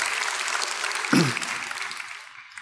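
An audience claps steadily in a dense, even wash of applause for a speaker being introduced at an evening talk, with a brief voice rising over it midway before the clapping thins out and fades at the end.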